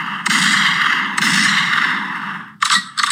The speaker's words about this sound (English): Yo, honestly, fam, I think that needs to be followed with a motherfucking gunshot.